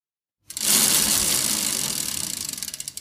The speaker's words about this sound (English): I'm going to spin the wheel and let's see what you get for barbecue bingo.